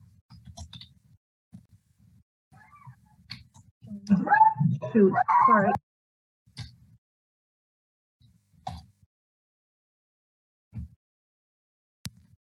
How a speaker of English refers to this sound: Sorry about that. My dog's going bananas.